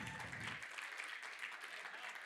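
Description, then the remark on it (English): An audience applauds the people who helped out on a camp, with dense, steady clapping, a continuous crackling wash of many hands that holds evenly throughout the brief stretch, with no voices standing out. “No, don't applaud them.”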